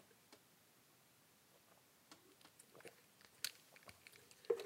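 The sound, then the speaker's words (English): A quiet sip of water: scattered small mouth clicks and soft wet sounds, ending with a slightly louder gulp or clink. No one speaks. “Ugh, need a sip of water here.”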